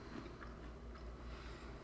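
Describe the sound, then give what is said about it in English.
Soft chewing of crunchy stale oyster crackers, with irregular crunches and mouth sounds over a low, steady background hum and no talking. “I can hear us chewing through the monitor here.”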